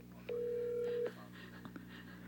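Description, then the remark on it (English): A single steady electronic phone tone from an incoming call, loud, lasting under a second before cutting off, leaving a faint low hum with a couple of small clicks. “Oh, he's calling me.”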